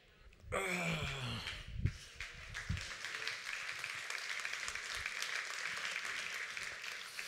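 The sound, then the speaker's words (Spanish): A church audience bursts into sustained applause during a sermon, a dense wash of clapping that begins abruptly and carries on steadily, with a few vocal exclamations and cries rising over it at the start. “Me gusta mucho esos aplausos, así que son dolorosos.”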